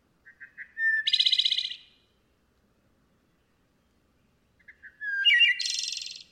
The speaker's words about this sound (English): That melodic flute, it just like I can close my eyes and listen to that song and it will transport me to like some magical place. That sound gets me to stop every single time. No matter what I'm doing, I will stop and listen to the wood thrush.